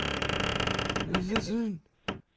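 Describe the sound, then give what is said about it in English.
A dry, grinding creak from an old door hinge at a storage facility drags on for about a second, then bends upward and downward in pitch as it swings, ending with a short knock. “Oh, that was an old one. You guys need to get some WD-40 on this.”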